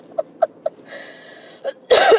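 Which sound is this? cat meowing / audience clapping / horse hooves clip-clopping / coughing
coughing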